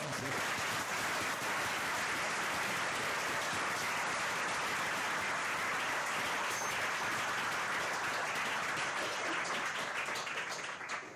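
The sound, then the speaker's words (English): A crowd applauds steadily for about eleven seconds, a dense, even wash of many hands clapping at a constant level with no voices standing out, as an audience welcomes the readers at a reading of the opening pages of The Pale King. “So, will you just please join me in clapping your hands and welcome.”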